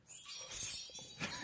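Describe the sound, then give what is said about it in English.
A playful vocal imitation of a fairy farting, rendered as a bright, tinkling shimmer that sparkles for about a second before ending in a short, louder burst. No one speaks. “Okay, this is my impression of a fairy farting.”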